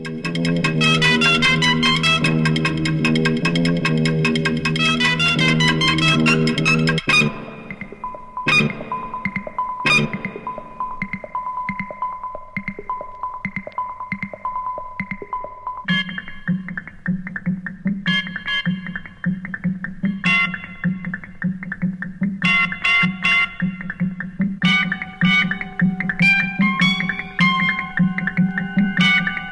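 Dense 1968 electronic tape music, pieced together from scissors and tape, with robotic computations and everyday acoustics. Buzzing, distorted tones and a thick harmonic drone, then sparse robotic bleeps and clicks over a steady low hum, with sharp percussive blips punctuating throughout. No one speaks.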